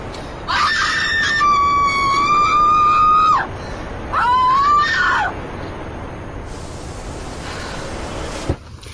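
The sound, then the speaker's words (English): A person lets out two long, loud screams, the first lasting about three seconds and the second shorter, with a brief pause between them and faint background noise afterward. “Is it all right if I scream?”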